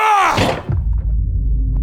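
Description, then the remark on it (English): A refrigerator door opens with a short creaking groan and a soft thunk as the seal releases, followed by a steady low hum. “So I opened up the fridge and jumped to the side, shielding myself with the door.”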